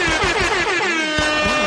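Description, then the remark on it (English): A loud, sustained air horn blast with a rich stack of harmonics, wavering slightly in pitch, continuous for the full moment with no voices. “How is she going to record the gunshots and the air horn?”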